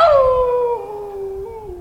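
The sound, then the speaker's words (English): A single long, loud howl sliding slowly downward in pitch over nearly two seconds, from people standing outside their houses on a street doing the nightly 8 p.m. howl for healthcare workers, with faint rumbling noise underneath. “So we're standing outside our house on the street, waiting for... the 8 p.m. howl. The howling for... healthcare workers.”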